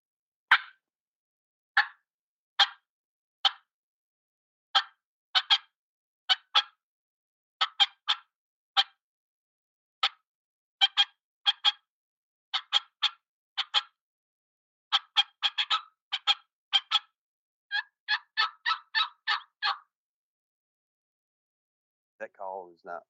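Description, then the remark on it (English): A person imitates a turkey on a mouth call, running a long sequence of raspy yelps that starts spaced and steady, then quickens into rapid clustered notes, clear with no talking. “So I'm gonna use a mouth call because I don't have my pot call handy, but this would be kind of the sequence if I didn't get one to gobble to the owl and the coyote.”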